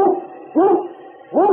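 A dog barks loudly, three sharp harmonic barks spaced unevenly, each rising then falling, with no voices: Yukon King, lead sled dog of Sergeant Preston of the Yukon, breaking the trail.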